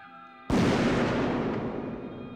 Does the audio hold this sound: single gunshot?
yes